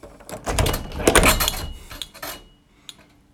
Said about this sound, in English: I opened the door and scared off the squirrel.